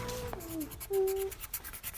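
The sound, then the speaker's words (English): Crinkly, scratchy rustling of torn paper scraps being handled, coming in a string of short, uneven bursts, with a brief steady tonal squeak partway through. “I've ripped up some bits of paper.”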